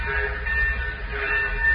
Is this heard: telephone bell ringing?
no